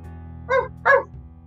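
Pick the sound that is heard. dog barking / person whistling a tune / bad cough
dog barking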